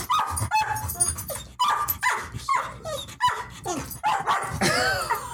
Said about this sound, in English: Okay, we got a literal cat fight, dog fight in here. Wow. Okay, we're back. We just had a dog and a cat fight, literally. We watched the cat, like, beat up the dog in our podcast studio. I'm not sure how they wandered in here, but it happened.